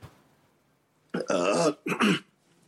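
Two loud coughs in quick succession, the first longer and rough, the second short and harsh, after a moment of near silence. No one speaks.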